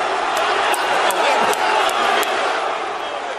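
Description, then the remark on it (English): A dense roar from a large wrestling arena crowd cheering and yelling without pause as The Rock incites them, loud and steady throughout, with sharp claps or thuds popping out above the din every half second or so. “And now inciting this crowd.”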